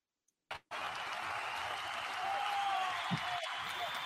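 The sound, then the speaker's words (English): Soft, steady applause with a faint crowd murmur runs for several seconds after a brief silence, a thin whistle-like tone briefly rising over the clapping. “I probably need louder cheering than that.”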